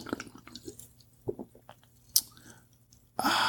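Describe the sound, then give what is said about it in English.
Someone sips grapefruit-flavored sparkling water: a few soft, wet mouth clicks and swallowing sounds, then a sudden loud, steady hiss of carbonation at the end. “Once again, let me get a sip of this. What is this? Grapefruit flavored sparkling water.”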